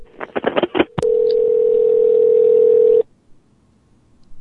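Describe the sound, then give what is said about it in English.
A rapid run of about five telephone keypad beeps, then a click and a loud, steady dial tone on crossed telephone lines that holds for two seconds before cutting off into near silence. No one speaks. “The lines are crossed.”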